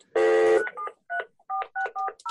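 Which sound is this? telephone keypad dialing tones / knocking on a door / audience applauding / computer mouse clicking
telephone keypad dialing tones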